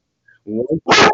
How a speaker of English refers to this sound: I'm sorry, my dog is barking.